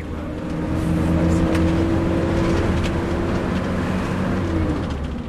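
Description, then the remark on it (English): A bus engine drones steadily as the vehicle drives along on an 8-hour journey, a constant low rumble with a faint hum riding on top, fairly loud throughout with no voices. “The bus journey is a long one, 8 hours.”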